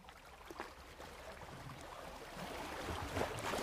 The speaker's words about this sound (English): Whoosh! A gust of water rustled the seaweed covering Dan's bed, sending it flying across the ocean floor. Dan turned to see what could have made such a large current. And it was Steve, swimming as fast as he could.